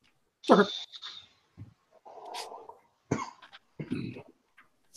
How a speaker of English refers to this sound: Sorry, dog was barking.